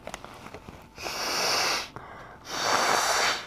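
A woman who is sick blows her nose twice, two loud, breathy honking bursts about a second each with a short pause between, after a few faint clicks.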